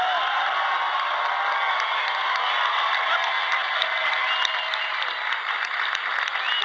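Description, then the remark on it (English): A large crowd at a political rally applauds and cheers steadily after a candidate's speech, a dense, loud wash of clapping with scattered whoops that holds at full strength for several seconds without a break. “That's a fired up crowd.”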